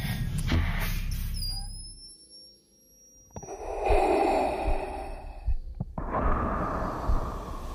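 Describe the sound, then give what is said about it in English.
Darth Vader's mechanical respirator breathing from Star Wars: loud, raspy hissing inhales and exhales alternate in a slow, steady rhythm, alone, with a faint high-pitched electronic tone in the background. “And I went with Darth Vader's breathing.”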